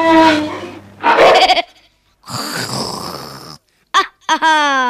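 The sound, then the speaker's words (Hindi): A lion cub roars in panic after a bear flings it up with its foot: several loud, strained, bleating cries in quick bursts separated by brief silences, unaccompanied by speech. “हड़बड़ी में शेर का बच्चा दहाड़ा और फिर पेड़ की एक डाल पकड़ ली।”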